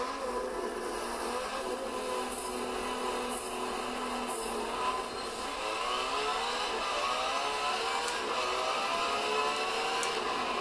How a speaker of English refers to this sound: I'm just playing Forza 7 right now. So, let's just hear this beautiful Ferrari V12 real quick. I believe it's two laps and we're in the rain.